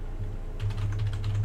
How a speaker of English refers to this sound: Do some typing real quick. See who the director for Wonder Woman is.